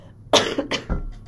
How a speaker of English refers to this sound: I'm gonna cough.